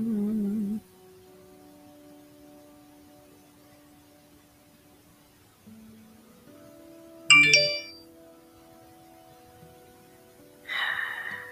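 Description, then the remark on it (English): A short electronic phone notification chime for something sent on TikTok sounds, a bright chirpy burst standing out against quiet, followed by a brief rustle or breath and another softer burst near the end. “My boyfriend sent me something on TikTok. This child. I'm now putting my phone on silent.”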